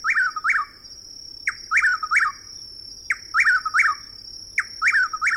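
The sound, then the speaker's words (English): A chuck-will's-widow calls loudly in a southeastern woodland in the evening, repeating its quick three-part whistled phrase about four times at a steady pace, over a continuous high insect drone. “The same evening, in a southeastern woodland, we hear the loud calls of a chuckwill's widow.”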